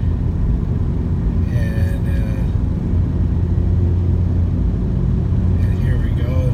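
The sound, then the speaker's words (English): The engine of a 2012 Mazda 3 hatchback hums steadily with a deep, continuous road rumble from inside the moving car as it drives a road bending along a hill, while a voice briefly murmurs over it twice. “Bend right here, and I don't know if you can hear the hum of my engine.”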